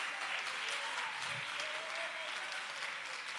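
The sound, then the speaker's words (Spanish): An audience claps their hands to praise God during a church service, a dense, steady wash of applause from many people filling the whole moment at an even, moderate loudness. “Alguien alaba a Dios con sus palmas.”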